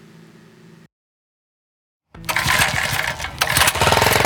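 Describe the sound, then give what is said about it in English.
A faint low hum gives way to a brief silence, then a water pump motor kicks on loudly and keeps running with a steady, rough, droning roar, pumping stockpiled rainwater from an above-ground swimming pool through irrigation tubing to rows of crops in a backyard. “turns on a pump that transports stockpiled rainwater from an above-ground swimming pool to rows of crops in his backyard.”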